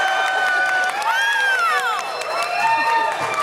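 A large show audience erupts in loud, sustained cheering and applause, with high-pitched whoops and screams rising and falling over dense clapping, filling the whole stretch without a break.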